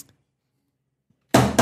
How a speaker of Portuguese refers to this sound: O martelo foi batido de novo.